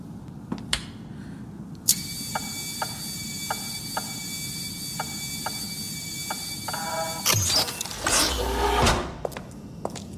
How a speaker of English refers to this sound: Just the door, right?